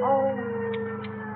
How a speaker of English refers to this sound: What's that? Hmm? What's a police car behind us? What do they want? Have you done something wrong? No, of course not, Mother. They just want to pass us, that's all.